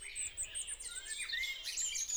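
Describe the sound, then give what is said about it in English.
Several birds sing and chirp together in a dense, continuous chorus of high, bright whistles and trills, steady and moderately loud with no voices present. “People tend to find bird sounds more relaxing and more pleasant if they're kind of smooth and harmonic sounding, if they're high-pitched, if they're quiet, if they have a sense of complexity as well”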